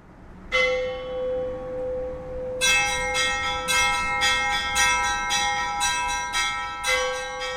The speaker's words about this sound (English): You know, we're told that the bells are the voices of the angels calling us to worship, so it starts your sort of religious experience from even before you enter the church.